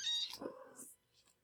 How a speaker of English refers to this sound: I hope that all their little kitty sounds make it into the podcast.